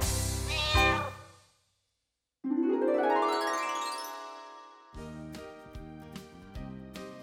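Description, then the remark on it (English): A loud cat meow with a drawn-out, tonal cry, followed by a rising, whining glide and a few short bright notes, with no one talking. “cat goes fiddle-i-fee.”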